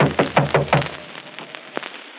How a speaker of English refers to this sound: Better knock harder.